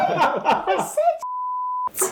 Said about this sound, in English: I'll just beep her out. Don't worry. Okay. I'll beep her out. It's just going to be one straight beep for the pirate.